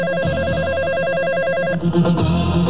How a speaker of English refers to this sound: But you know, last night, phone rings.